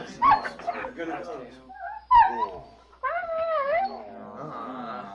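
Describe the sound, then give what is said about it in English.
Two dogs, Tag and Ponto, circle each other in the middle of the street before a fight, snarling and whining in several tense, drawn-out bursts with a short pause between them, loud and tonal rather than barking. “met in the middle of the street and circled each other ominously, growling as they each looked for an opening.”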